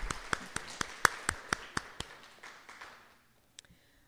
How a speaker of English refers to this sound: So can we just at least stop here and just give an applause to Greensboro Church? Thank you.